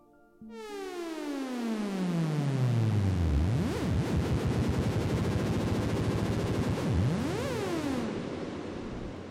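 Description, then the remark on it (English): A deep, cavernous reverb effect from a Big Sky reverb pedal swells into a dense, sustained wash, with tones sweeping down and back up in pitch, played alone with no talking. “If I wanted to go even bigger with that, I can even go into my Big Sky and I can pull out some really deep effects.”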